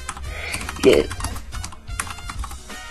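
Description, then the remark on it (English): Rapid, irregular clicking of someone typing on a computer keyboard, with a burst of faint voice in the background partway through. “So while you talk, you get keyboard noises.”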